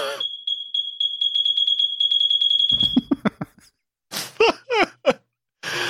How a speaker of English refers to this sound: He says, folks, the alarm has been fixed. He got his smoke detector fixed. Wow. End of an era. Let's get a 21 beep salute.